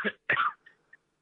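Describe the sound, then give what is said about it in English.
A phone caller coughing over the line: two quick, harsh coughs close together, followed by a couple of faint throaty catches, with no talking. “Caller 646. Stop coughing.”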